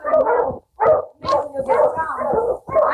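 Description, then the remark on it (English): A boy's dog, out in the river near Selkirk, barks and yelps in a rapid series of loud, strained bursts with a whining edge, with only brief pauses between them. “No, I gotta get my dog. My dog's out there.”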